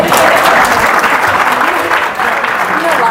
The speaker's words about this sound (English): Anyway, so let's clap it up for him.